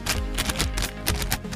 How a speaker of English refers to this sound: Like, these chips are good. These chips are good. These chips are good. These chips are good. Crunchy, crunchy.